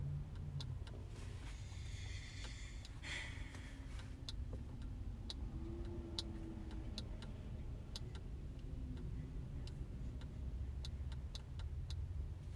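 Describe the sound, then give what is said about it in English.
Sharp clicks from a car window switch, pressed repeatedly to open and shut the window while the car is off, repeat at an irregular pace, with no window motor running, over a steady low rumble inside a parked car. “I'm opening and shutting your window. But it's off.”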